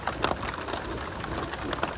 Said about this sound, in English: And this is the heaviest it rains on me the entire trail. So I'm like sitting over there. I found a larger like pine. And I pull out the Tyvek. The rain is like, it's literally beating down on the Tyvek. Like I can feel it.